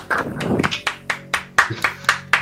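Brief applause during an online show, given for the show's video editor from the Netherlands: a dozen or so sharp, crisp claps in an uneven rhythm, busier and mixed with some murmur at first, then thinning to separate, spaced claps. No one speaks.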